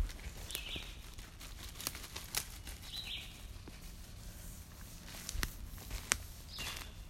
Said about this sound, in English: Listen to the birds.